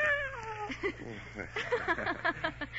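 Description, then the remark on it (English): A cat named Miss Jones gives a drawn-out, falling meow, followed by a run of shorter, chattering cat vocalizations, with a faint steady hum underneath. “And this is our cat, Miss Jones.”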